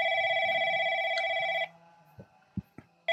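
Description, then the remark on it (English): A telephone rings with a steady electronic trill that runs loud for over a second, stops briefly amid a few faint knocks, then starts ringing again at the end. “Okay, we get it. You're a phone.”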